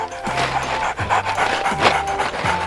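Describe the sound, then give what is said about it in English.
A small yellow puppy pants rapidly, a steady run of quick, breathy huffs with a faint low hum underneath and no voices. “Silly puppy, come back here.”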